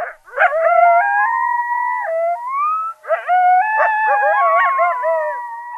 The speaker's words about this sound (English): And biologists say coyotes sing a particular song once they've settled in an area. It's called the group yip howl.